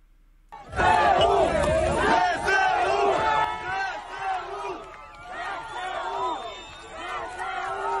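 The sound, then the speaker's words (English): A large crowd erupts into loud cheering and chanting after a brief quiet start, many voices shouting together in rising and falling waves that stay strong throughout, as people are hoisted onto shoulders. The chant seems to be three words. “Got to hoist them on their shoulders, cheering.”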